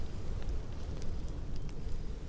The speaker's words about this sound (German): unterbrochen einzig vom gesprächigen Knistern des Feuers. Seine Funken steigen in den Himmel, und es sieht fast so aus, als würden sie sich mit ihren Freunden, den Sternen, treffen.